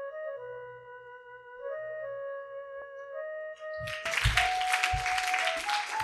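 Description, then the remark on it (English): Sustained keyboard chords play alone in a church service, then the audience breaks into loud, continuous clapping for people coming forward to be prayed with, swelling over the music for the last couple of seconds, with a few low thumps underneath. “Keep clapping for them.”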